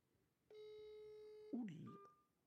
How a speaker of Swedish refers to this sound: Den här telefonen. Du ringde Olle i fickan.